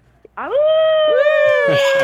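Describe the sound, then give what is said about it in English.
A radio caller on the phone imitates a howl: after a brief click, the voice slides upward into a loud, sustained mid-high tone that holds steady for over a second, wavering slightly before breaking off at the end. “Do you want to give us a howl?”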